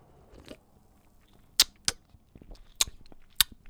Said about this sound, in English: I'm going to take a quick sip because this is glorious.